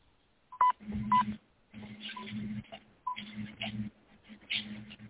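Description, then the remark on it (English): Telephone keypad tones beep in a string of short bursts with brief gaps, sounding thin and band-limited over a phone line, as another caller rings through during a phone call. “I think you're having some interference with your phone. Yes, somebody's calling me.”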